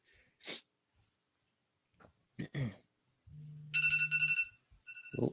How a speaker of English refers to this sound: Turn your alarm off first, though.